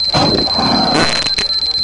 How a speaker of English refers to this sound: Someone called Captain Drolo's comlink. The ringtone sounded like a rancor farting.